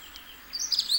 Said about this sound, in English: And the dunnock.